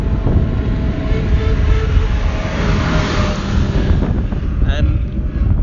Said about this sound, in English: Here's another tractor.